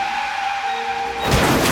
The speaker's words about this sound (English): And now your motorcycle just crashed into the side of that armored car. And then got run over by it.